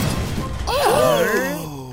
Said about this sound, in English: Oh no! The boat had banged into something and come to a stop.